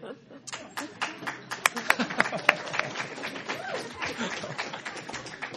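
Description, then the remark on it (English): An audience at a Southern Alberta Council on Public Affairs presentation on Halloween 2013 breaks into applause, a dense patter of many overlapping hand claps that swells to sharp peaks midway, then settles into a steady, softer clatter with some voices mixed in. “I wasn't expecting any applause, but welcome to Halloween 2013 and to our presentation.”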